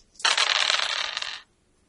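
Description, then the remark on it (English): Four dice rattle and clatter across a hard surface for just over a second, a dense burst of clicking that stops abruptly, with no voices. “So roll your Bounty Hunter cliche, as many dice as it has. 4 dice.”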